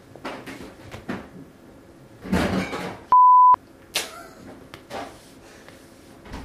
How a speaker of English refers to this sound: Just the sounds of going for a drink. Go to the fridge.